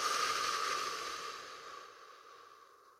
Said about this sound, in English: Take a deep breath in. Let's do it together. Breathing in through the nose. Big old deep breath. I know I'm a heavy breather. Hold it. Relax the body as much as you can. And then release, let go.